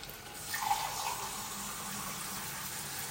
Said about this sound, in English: You're going to put a bit of water in there, because what you don't want it to do is to dry out too much. So, as ever, like a cup of water is good.